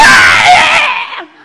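A man lets out a loud, strained scream lasting just over a second, harsh, then cuts off abruptly, with no talking.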